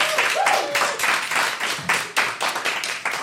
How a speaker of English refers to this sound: All right, give them a round of applause.